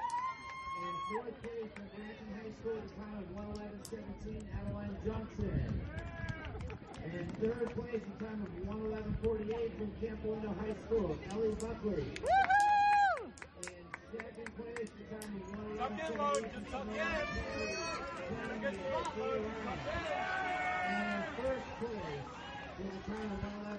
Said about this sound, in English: So the loudest cheers of everybody that was presented a medal 1 through 6 was for the boy.